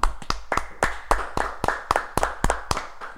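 A short burst of steady hand clapping in a studio, roughly a dozen crisp claps in an even rhythm, sounding like one or two people applauding, with no talking.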